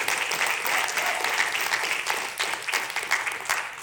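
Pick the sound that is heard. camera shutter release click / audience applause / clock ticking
audience applause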